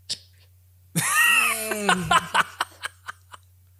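A sudden sputtering burst, half laugh and half choke, as someone nearly coughs up a Red Bull, trailing into a string of short, evenly spaced gasping coughs that taper off.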